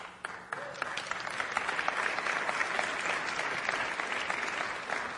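A crowd breaks into sustained applause, many hands clapping in a dense, steady wash that holds at an even, fairly loud level throughout, with no voices standing out.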